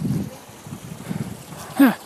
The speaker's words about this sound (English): Doggies playing in the water. I love it when you can see the water hitting the surface of water. Can you hear those dogs splashing about in the thing?